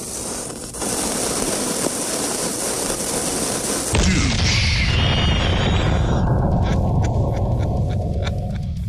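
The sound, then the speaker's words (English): A lit fuse fizzes with a steady hiss for about four seconds before The Rizzuto Show's 'douche cannon' sound effect fires with a sudden deep boom, followed by a loud rumbling roar and rapid crackling pulses. No one speaks. “I think we should light the fuse on the douche cannon.”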